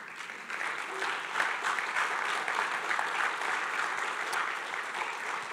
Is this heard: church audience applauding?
yes